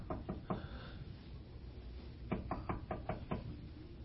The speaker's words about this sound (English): on a physical door and you're knocking and nobody comes to the door, don't you just knock a little harder?